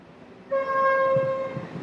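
An express train's whistle sounds one long, steady, loud blast as the train comes around a corner approaching a station. It starts abruptly and holds to the end, over a low rumbling background of the approaching train.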